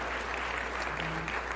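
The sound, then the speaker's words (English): A church audience breaks into applause, a steady wash of many hands clapping at an even, moderate loudness with no single claps standing out. “So let's give God a hand for that.”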